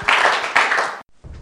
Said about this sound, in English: Why don't you give the Lord a clap offering as you take your seats?